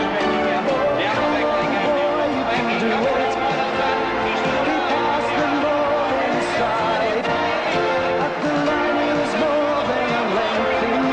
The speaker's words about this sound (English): Episode 58, the crowd's in pandemonium all celebrating.